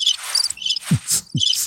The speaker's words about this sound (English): I just like to have long pauses in between words. That's right. Very long pauses with the crickets.